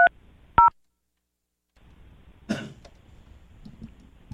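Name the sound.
telephone dialing tones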